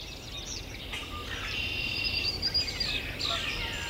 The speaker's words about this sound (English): So who are we listening to here? We're hearing northern cardinal, blue-gray gnatcatcher, warbling vireo, red-winged blackbird, swamp sparrow, yellow warbler, common grackle, catbird, common yellowthroat, Canada goose.